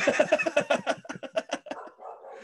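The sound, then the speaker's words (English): A dog barks in a rapid, steady string of about a dozen sharp barks, close and fairly loud, trailing off into a softer whine at the end. “My dog's barking too much.”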